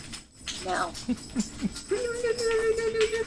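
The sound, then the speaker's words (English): A person vocally imitates a jingling dog collar, making a few quick chirpy, rattly mouth sounds followed by a steady held tone, fairly loud, with no actual words. “That was my impression of your dog's collar.”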